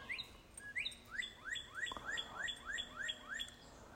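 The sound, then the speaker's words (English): Birds singing in a quick, repeated series of rising chirps, clear over a soft outdoor hiss, with no voices present. “Birds singing.”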